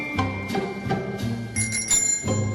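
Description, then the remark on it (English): A bike bell rings repeatedly, about six bright dings in an uneven rhythm, each leaving a metallic tone that hangs in the air. It sounds clear, with no talking. “Hit the bell. Hold on, let it ring. That's my bike bell.”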